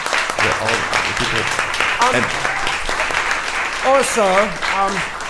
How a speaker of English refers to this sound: Well, on that happy note, thank you all for coming very, very, very much. Let's one more round of applause for the organizers